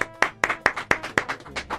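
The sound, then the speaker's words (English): A short round of hand claps welcoming a guest DJ, about eight sharp, evenly spaced slaps in a quick steady rhythm, moderately loud, with no talking over them. “… is here. Round of applause.”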